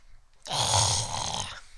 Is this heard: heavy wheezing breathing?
yes